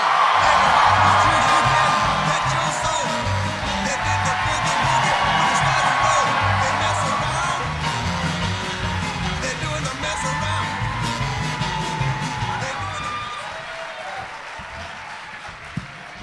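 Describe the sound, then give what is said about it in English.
A large live-show audience gives an ovation to a performer on stage, applauding steadily for about sixteen seconds, with whoops and cheers rising over dense clapping that stays loud throughout before easing slightly near the end. “They gave you such an ovation that you looked at your phone on stage silently.”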